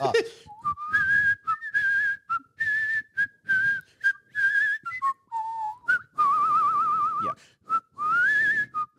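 Someone whistles a melody, with clear, bright notes in short phrases separated by brief pauses, including a long wavering note partway through. No one speaks.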